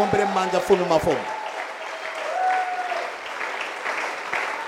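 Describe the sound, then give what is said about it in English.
An audience claps hands for the King of Kings in a steady, dense wash of applause that continues throughout, with a brief musical chord at the start that bends downward and fades under the clapping. “Clap your hands for the King of Kings.”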